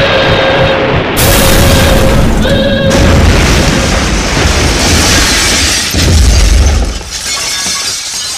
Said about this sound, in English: That whole place was shaking beyond belief. That explosion must have been pretty big.